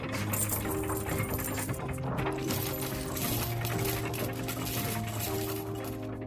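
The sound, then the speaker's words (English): A coin press thumps and clatters in a steady rhythm as several tons descend to strike blanks into finished coins, with metallic clinks of coins dropping amid a continuous mechanical hum, moderately loud throughout. “Finally, you get a finished coin after that striking process.”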